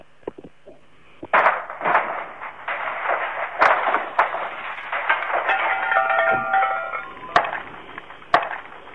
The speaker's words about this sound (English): Right, so fantastic. The CD players are getting what they deserve. They're being smashed as we speak.